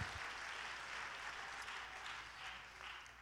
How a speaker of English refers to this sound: Come on, clap your hands.